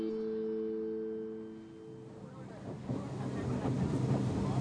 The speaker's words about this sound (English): On the boat, we continue upstream.